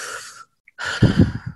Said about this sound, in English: Let's just calm down. Let's take a breath.